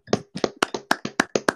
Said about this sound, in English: Clap it up.